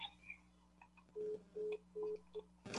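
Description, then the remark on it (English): Faint telephone tones beep in the background, four short electronic bursts in a quick uneven rhythm over a low steady hum, with no one speaking. “But I move heard the phone.”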